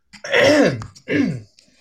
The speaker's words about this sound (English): Let me clear my throat for this one.